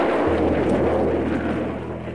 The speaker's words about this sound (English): Those of us in Britain who have listened to the roar that followed the explosion of a V-2 on arrival will certainly recognize it.